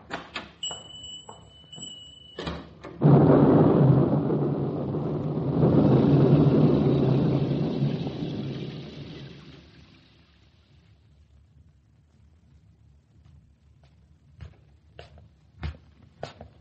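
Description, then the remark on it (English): A heavy roll of thunder breaks out with a rush of rain, rumbling loudly for several seconds before fading away, framed by a few sharp clicks and knocks before and after. “By the time I got home, the storm outside had stopped”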